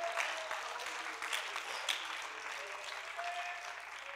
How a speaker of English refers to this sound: Come on, somebody clap your hands and shout it to the Lord.